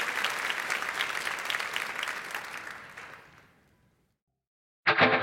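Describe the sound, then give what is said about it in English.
An audience applauds with dense, steady clapping that gradually fades out into silence, followed by an abrupt burst of a different sound right at the end. “Let's give him a hand.”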